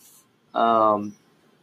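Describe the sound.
A single loud sneeze with a sharp onset and a voiced, drawn-out tail lasting about half a second, surrounded by near silence.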